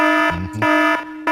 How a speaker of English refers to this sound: Doc has the loudest, most aggressive alarm clock of all time